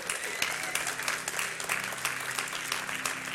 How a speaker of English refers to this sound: Guys, that's better preaching than y'all are hand clapping right now, I can tell you that.